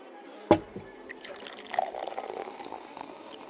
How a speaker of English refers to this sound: The man walked over to one of his bookshelves and produced a thermos with two small glasses. He opened the thermos and poured a sweet-smelling liquid into both the glasses.